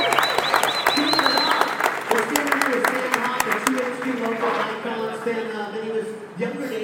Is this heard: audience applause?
yes